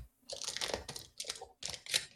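Crisp crinkling of a plastic bag being opened, arriving in several irregular bursts of rustling and crackling over about two seconds, with no talking.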